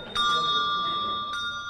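A handbell rings out, its bright, steady tone sustaining after the first strike, with a couple more clapper taps partway through and faint background noise underneath.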